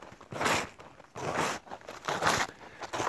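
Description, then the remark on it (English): Steady, rhythmic crunching of snowshoes pressing into snow as someone walks in winter, with about four loud, gritty footfalls in a walking pace and no voices. “I have not had a chance to test this, so I hope that the sound of snow crunching under my feet is not too overbearing.”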